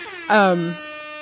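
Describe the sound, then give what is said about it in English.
A single loud, brassy air horn blast lasting about half a second, its pitch sagging downward before it cuts off, leaving a faint steady tone hanging behind it. “That was my stupid air horn, which Oh, yay!”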